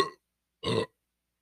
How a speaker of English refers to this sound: Are you okay? Oh, God, that didn't sound good. No, it was just a really big burp.